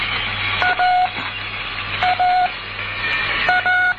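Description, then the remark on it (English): A Morse code end-of-message sign, AR, closing a practice exercise, tapped out in short and long beeping tones, repeated three times in quick bursts over a steady background hiss, with no voices. “Und wir schließen hier die Übung mit dem Zeichen für Spruchende, mit AR.”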